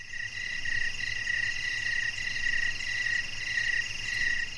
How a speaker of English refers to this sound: Well, goddamn, there's a lot of fucking chirping in here.